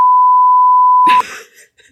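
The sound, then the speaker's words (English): A loud, steady censor bleep tone holds for about a second, cutting off abruptly as a burst of voice breaks in, followed by a brief trailing murmur. “I actually recently stole from, beep this out.”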